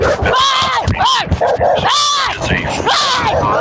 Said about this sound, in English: Hey, it's a fucking dog!